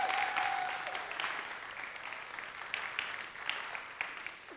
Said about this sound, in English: But congratulations. Can I give her a big round of applause? It's good.